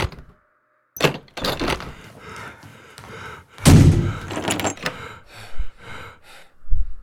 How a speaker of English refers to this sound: Maybe he did. But maybe he's not who's knocking on the door out there.